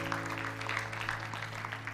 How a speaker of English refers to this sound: Yeah, you can give the Lord a clap. Amen.